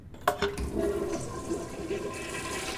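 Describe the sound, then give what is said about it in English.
An antique toilet dating to 1895, shown as a museum exhibit, flushes: a sharp clunk of the handle, then a loud, steady rush of swirling water that keeps churning without letting up. “This antique toilet dating to 1895. Does it still flush?”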